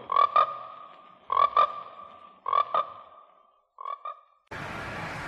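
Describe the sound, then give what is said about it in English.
Frogs croak in four evenly spaced bursts of quick double calls, loud with a ringing tone, the last burst softer, before an abrupt hiss of noise cuts in; from the trailer for the American International Pictures film Frogs. “frogs. Today, the pond.”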